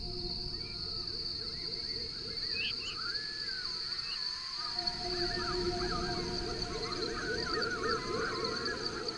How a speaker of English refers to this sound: Night flight calls of the veery.